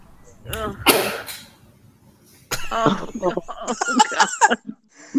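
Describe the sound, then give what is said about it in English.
A harsh throat-clearing hawk is followed by a wet slap of spit hitting the floor, fairly loud, with people talking just afterward. “If you want to hear it again, you can hear it slap on the floor.”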